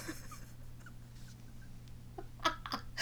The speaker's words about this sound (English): You can hear me fucking sniffling. You can hear the snot going back up in my nose, okay?